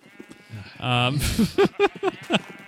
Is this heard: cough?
no